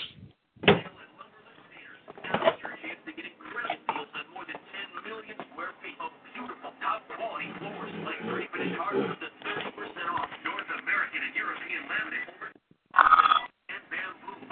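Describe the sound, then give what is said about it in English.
A phone is handled and fumbled with while switching phones: muffled rustling and shuffling runs throughout, punctuated by a few sharp knocks and clunks near the start and again near the end. “I'm going to switch phones first. Hold on.”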